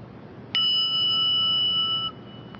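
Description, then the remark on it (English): A single meditation bell is struck once, giving a sharp onset and then a clear, steady ringing tone with bright overtones that sustains for about a second and a half before fading out. “Now, when I ring this bell, connect with the sound as I ring it.”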